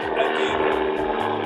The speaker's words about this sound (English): excuse us for the helicopter.